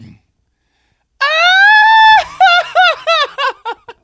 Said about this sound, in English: You want a grito? You can't get a grito.